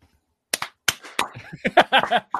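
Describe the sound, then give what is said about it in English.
Sharp hand claps ring out to trigger a Clapper to turn the lights back on after a power loss, a few widely spaced at first, then a quicker, busier run of claps with what sounds like voices mixed in. “Try the clapper.”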